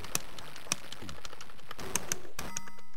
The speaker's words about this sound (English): I'm pushing buttons. I added some coins.